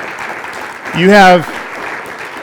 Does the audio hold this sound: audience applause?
yes